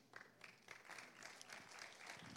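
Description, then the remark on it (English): A short burst of polite, scattered golf claps from a small crowd at the end of a speaker's point, light, the individual claps blending into a soft patter with no voices over it. “And so Jesus says this to the polite golf claps at the end of that point.”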